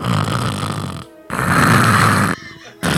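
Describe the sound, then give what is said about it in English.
Someone imitates a man's loud snoring with their voice: two long, rasping, forceful snorts separated by brief pauses, and a third starting just as it ends, with no other sounds. “His breathing is the snoring.”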